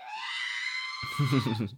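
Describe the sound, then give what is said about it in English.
A voice imitates R2-D2's death scream from the video game Lego Star Wars: a loud, high-pitched wail held for about a second, then breaking into a lower, warbling vocal cry before cutting off. “I would play as R2-D2 so I could jump off of things and hear that scream.”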